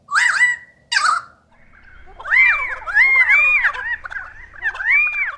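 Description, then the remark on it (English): A male lyrebird mimicking a pied currawong: two short, loud ringing calls, then a longer run of rising and falling whistled notes, clear with no talking. “A pied currawong.”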